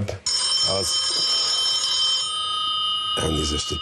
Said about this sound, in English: During his 5 minutes, in the middle of his speech, he got a call on his cell phone.